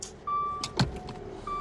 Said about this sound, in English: I had to move my damn car.